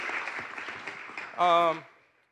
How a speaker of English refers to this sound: First and foremost, happy Veterans Day. Any veterans out there? Raise your hands. Anybody? Yeah, woo! Round of applause there, yeah.